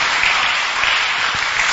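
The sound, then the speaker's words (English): A crowd claps steadily, the dense patter of many hands blending into a continuous, loud wash of applause with no pauses over the short stretch. “Please stand to your feet. Those who are clapping, may the Lord help you to get it.”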